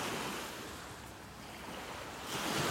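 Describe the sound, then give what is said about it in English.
Ocean waves wash steadily onto a shore, a broad hissing roar that dips slightly and then swells again near the end, with no voices present. “I keep pausing because I figure you want to listen to the waves as much as I do.”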